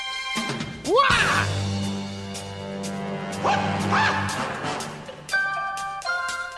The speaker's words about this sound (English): But this is the theme song from Enter the Dragon, Bruce Lee, the martial artist out of Hong Kong.